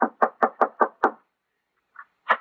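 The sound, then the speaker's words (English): A quick run of six firm knocks on the wooden door of a house, evenly spaced, followed by a brief pause and a couple of fainter, scattered sounds. “Yeah, knock on the door.”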